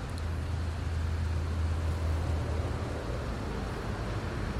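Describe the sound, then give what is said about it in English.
A school bus drives past in North Carolina, in a spot surrounded by trees, its low engine rumble steady over a broad wash of road noise before easing off partway through. No one speaks. “Maybe even a car driving by. I think that's a school bus, actually.”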